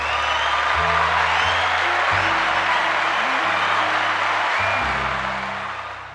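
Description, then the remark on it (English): A crowd applauds steadily for several seconds, a dense wash of clapping over low, sustained organ-like tones that shift pitch, with the applause thinning and fading toward the end. “He is worthy to be praised. Round of applause.”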